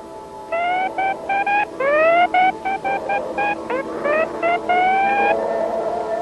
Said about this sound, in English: The Star Trek Command Communications Console with telescreen and warp drive sound. New from MECO.